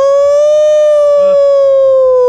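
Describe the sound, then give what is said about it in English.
A person imitates a wolf howl: one long, loud, steady note held for a couple of seconds, sagging slightly in pitch as it ends, with no talking. “Yeah, I'll howl at the monster.”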